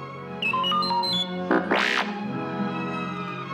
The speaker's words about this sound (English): R2-D2 beeped softly.